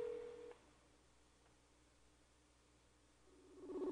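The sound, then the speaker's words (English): A phone call tone plays briefly, cuts off into a quiet hum, then a ringing tone swells back up and grows louder at the end, with no one speaking, as a person places a call on a phone. “Dude, I'm trying to call at the same time. I'm calling, though.”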